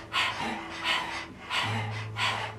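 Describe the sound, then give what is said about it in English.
A person pants like a dog as a breathing exercise, mouth open and tongue out, pumping the navel and pushing out four forceful, hissing exhales in a steady rhythm under a second apart, with softer natural inhales between and no talking. “To get into it, if you've never done it before, open your mouth, stick out your tongue, and begin to pant like a dog, focusing on the exhale.”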